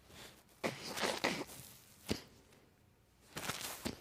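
nose blowing

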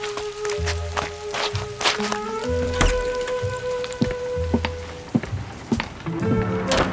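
rain falling

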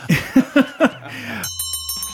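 closing bell ringing

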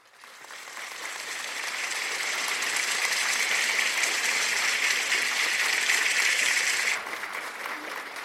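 crowd cheering and applauding

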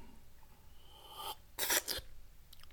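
sipping wine

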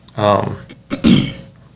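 throat clearing

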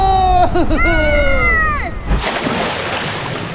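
rushing river water

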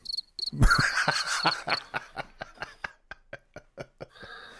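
crickets chirping

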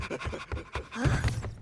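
dog panting

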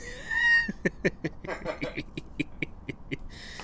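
cat meowing

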